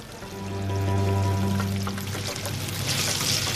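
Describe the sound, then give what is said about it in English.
Eggplant frying in a pan for baba ganoush, a steady sizzling hiss dotted with small crackles and pops, over a low droning hum that fades out as the sizzle turns brighter toward the end. “I'm frying the eggplant to do my baba ganoush.”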